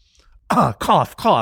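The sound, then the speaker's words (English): A person makes three loud, throaty cough-like bursts in quick succession, each voiced and gravelly, as if mimicking a cough. “Cough is hard because coughs just sound like coughs.”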